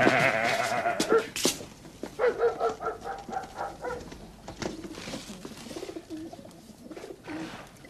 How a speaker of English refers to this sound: I've got a goat.